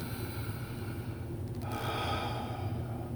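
Steady breathing in and out through the nose by a person sitting at ease with good posture and dropped shoulders, fairly loud, with a soft airy rush that swells midway as one breath turns to the next. No one speaks.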